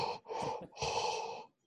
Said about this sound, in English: Maybe like a 1-mile walk because we don't want you breathing overly heavy.